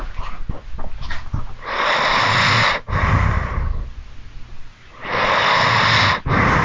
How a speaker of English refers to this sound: Here, hold on. Let's see if we can get some snoring here.